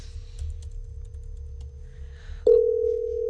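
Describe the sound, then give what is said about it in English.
A telephone busy signal sounds as a loud, steady electronic tone that jumps up near the end while a call is placed, after a faint hum of the same pitch and some light keyboard tapping. “She sounds very busy.”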